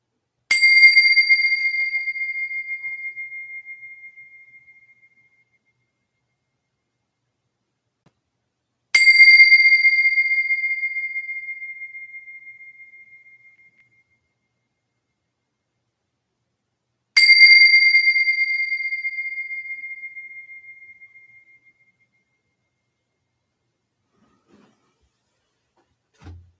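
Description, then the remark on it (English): Three bell strikes spaced about eight seconds apart, each a clear bright tone with high ringing partials that is left to fade slowly into silence before the next one sounds. “All right, so here's our three bells. And we let them ring to completion.”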